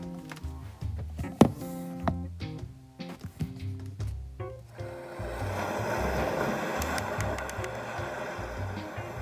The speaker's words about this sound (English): Okay, so for at least one minute, I'm gonna put some ocean sounds, okay? Hey, Google. Play ocean sounds.